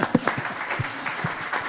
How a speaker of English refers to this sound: But I just want to give a round of applause to this group right now because you've laid an incredible framework for success of the future. So let's do it.